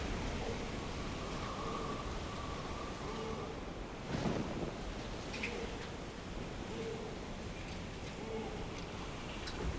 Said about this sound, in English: you find yourselves on a ship. Nice. And it is tossing to and fro in a horrific, horrendous storm on the ocean.